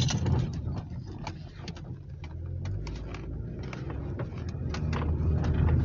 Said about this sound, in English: Okay, I just almost got hit by a food delivery truck because he wasn't doing what he's supposed to.